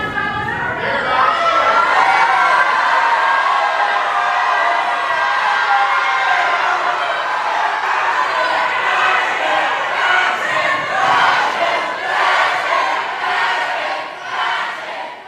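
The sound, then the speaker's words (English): A large crowd in the House galleries of a legislature shouts and yells in a loud, sustained roar of many overlapping voices as Representative Pearson's vote comes down, with shouts of "fascist" and rhythmic chanting pulses emerging toward the end. “And a lot of chants, a lot of shouts of fascist.”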